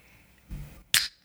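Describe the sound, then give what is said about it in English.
A quick, wet slurping sound, a brief sharp burst after a soft low rumble, with another short slurp starting just as it ends. “It's a routine thing that he does, and then he does this awesome slurp sesh that everybody loves to listen to.”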